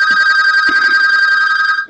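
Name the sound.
telephone ringing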